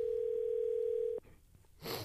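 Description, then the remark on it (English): A single steady, fairly loud ringing tone of an outgoing phone call holds for about a second before cutting off, followed by a quiet pause and a brief burst of rustling noise. “Oh, it's ringing.”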